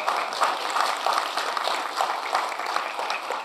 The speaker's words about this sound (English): I believe we should just give a hand clap of God.